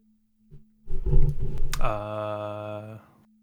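A short intro jingle: a brief thump, then a loud growling roar that gives way to a bright, steady horn-like tone held for about a second before cutting off, over a faint low hum.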